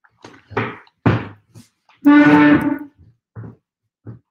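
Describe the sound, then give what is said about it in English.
A door being locked: two solid thunks, then a short ringing metallic squeal, followed by a few small clicks spaced out at the end. No voices. “I'm locking the door. You see, I've locked the door.”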